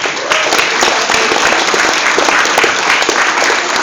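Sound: audience round of applause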